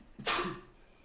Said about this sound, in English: Bless you. That's what I meant to say.